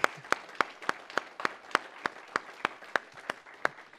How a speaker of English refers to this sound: First, I'm gonna applaud you. You can all join me if you want to, but I just say thank you.